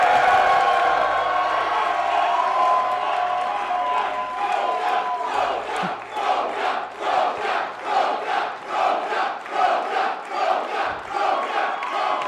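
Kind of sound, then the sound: crowd, crowd cheering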